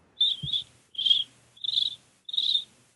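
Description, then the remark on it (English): Someone imitates chirping crickets with four evenly spaced, high-pitched trilling chirps in a steady rhythm, fairly close and clear, with no talking around them. “Actually, that's pretty good. Cricket's impression there.”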